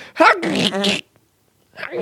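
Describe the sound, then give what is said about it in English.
A person imitates a stifled sneeze with their voice: one compressed, pinched burst lasting about a second, followed by a short silence before the voice starts again. “And I feel like I see it less and less these days, but I really feel sorry for people who do that stifled sneeze.”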